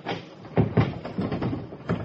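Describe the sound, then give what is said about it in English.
A locked door is rattled and shaken several times in quick, uneven bursts, its latch and frame clattering and thumping without opening. The sound is fairly loud, with no one speaking. “Door's locked.”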